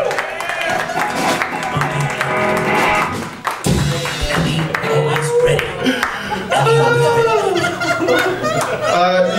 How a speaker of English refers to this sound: We gotta clap it up one more time for him.